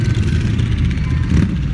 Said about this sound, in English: Motorcycle gang.